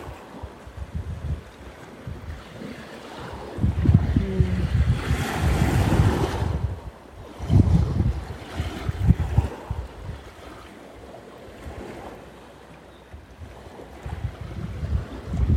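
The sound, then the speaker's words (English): Ocean waves wash onto a rocky shore strewn with driftwood in broad, rushing surges, swelling loudly around the middle and easing back between breakers, with a steady wind-blown hiss underneath and no voices. “…”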